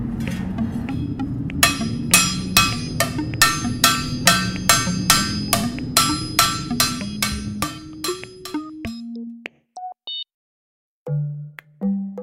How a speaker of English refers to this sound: Once the pan is pressed, then there's still some deforming that occurs around the edges, and so we heat it up and then hammer that out by hand.